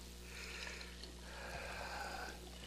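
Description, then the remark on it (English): A steady stream of water tinted with food coloring pours into a glass for a few seconds, a soft continuous splashing trickle with a faint ringing tone, fairly quiet, with no voices. “I figured out a way when I was in junior high, no, in fourth grade, to fill up a glass with water.”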